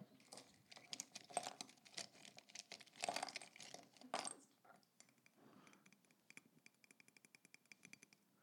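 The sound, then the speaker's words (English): Hard plastic pens clatter and rattle against each other in a jar, a busy jumble of clicks and taps, easing into lighter, scattered tapping toward the end. “I was like so talking about like the tapping the and noise. The pens. Yeah, and so we have like a jar of pens.”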